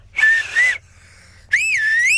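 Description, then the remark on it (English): Someone whistles through pursed lips in two clear bursts: a short steady tone, a brief pause, then a wavering, warbling whistle that rises and dips in pitch. “I can only whistle like that.”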